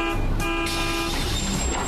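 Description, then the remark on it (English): A bus horn blares in a long, steady toot over the rumble of a large vehicle rolling past, loud throughout with no voices. “But if you'll wait right here, in just about 2 minutes, the bus to point C will be coming right by.”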